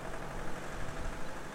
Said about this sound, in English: but then I heard something. Another motor.